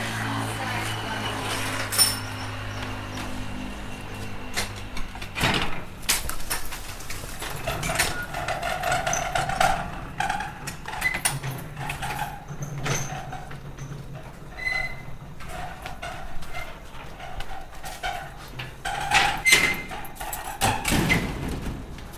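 Several heavy doors, about three sets, thud shut one after another, including a metal roller shutter being pulled down with a long rattling clatter, and scattered knocks and bangs in between.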